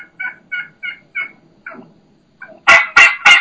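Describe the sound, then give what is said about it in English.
A dominant turkey hen gives a low, slow call: a steady series of soft, evenly spaced yelps, then three loud, slower, coarse yelps. No one talks. “And then you can hear that low and slow, ow, ow, ow. That's a hen saying, no, I'm the dominant one.”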